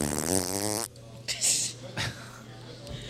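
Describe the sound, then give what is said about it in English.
A voice blows a buzzy, raspberry-style fart imitation with the mouth for almost a second, followed by a few short breathy bursts and quiet murmuring. “not playing the fart noises, so I gotta make my own over here.”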